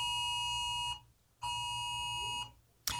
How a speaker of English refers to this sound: That alarm that you just heard is actually Joe's phone letting us know there is a heat wave.